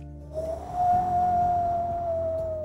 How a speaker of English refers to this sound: On the other side of the door, it was like we were on top of the tallest mountain in the whole wide world. It was windy and snowy and definitely not at home.